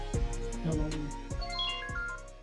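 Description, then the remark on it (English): A melodic phone ringtone from an incoming call plays on its own, a bright, chiming tune with steady rhythmic beats and rising notes, fairly loud throughout. “Dang, got a phone call as soon as that happened.”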